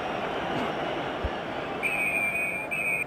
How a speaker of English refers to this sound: Referee blows for half time.